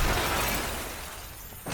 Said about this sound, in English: And you see this, like, cool heart clock shatter.